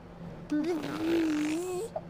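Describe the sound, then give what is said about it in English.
A single person's voice buzzes out a drawn-out motorcycle engine imitation, a steady humming drone lasting over a second with a slightly wavering pitch, no other talk during it. “can we hear your best motorcycle noise?”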